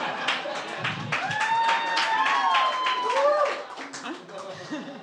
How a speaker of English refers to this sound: Applause break for Rego. Thank you.